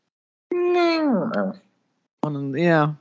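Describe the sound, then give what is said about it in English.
A person vocally imitates a whining dog, like a dog that doesn't know what it wants, with two drawn-out, nasal whimpers: the first slides downward and trails off, and after a short pause the second rises. Both are fairly loud. “That's the noise. It's like a dog whining when they don't know what they want.”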